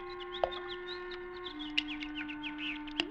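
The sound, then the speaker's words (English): Small birds twitter and chirp continuously over a steady low hum. A few sharp splashy knocks break in as birds play in a fish pond in the evening. “What's that? Oh, birds playing in the fish pond.”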